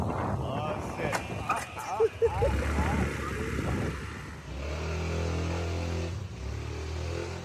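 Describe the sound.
A motorcycle carrying three riders revs and drones on the way to Ked, its pitch climbing steadily in the second half after a busy, noisy stretch with voice-like sounds mixed in.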